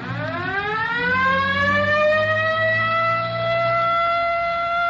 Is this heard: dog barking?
no